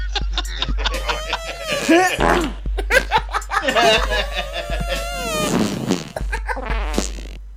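A loud, busy remix built from fart sound effects: rapid squelchy bursts and pitched blurts chopped over a steady pulsing bass line, playing continuously.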